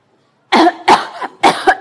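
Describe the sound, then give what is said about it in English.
Three loud coughs in quick succession, deliberately forced by a person rather than natural, each a short harsh burst with brief gaps between, and no talking. “It wasn't my body, it was my mind. I was forcing that. You're right. That wasn't a real cough or a sneeze.”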